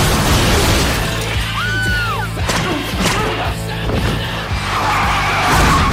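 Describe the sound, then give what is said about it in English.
A car engine rumbles loudly as tires screech in a short skid, followed by a series of heavy impact thuds and a shattering crash as the car hits a person, all intense. “You hit me with your car.”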